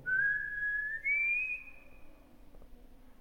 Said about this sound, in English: Can you copy this whistle?